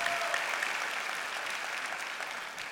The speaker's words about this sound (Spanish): Esto es, date un aplauso, anda.